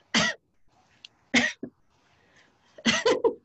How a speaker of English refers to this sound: I always cough. She always likes to cough, yeah. I can't help it. I'm a lightweight.